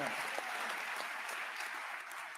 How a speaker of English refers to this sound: Yeah. Do you hear that applause?